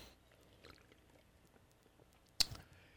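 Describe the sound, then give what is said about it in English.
Quiet sipping of a Bean Flicker drink: soft mouth and liquid sounds, then one sharp clink near the end, like a cup being set down. No one speaks. “Before that, I'm going to take another sip of Bean Flicker.”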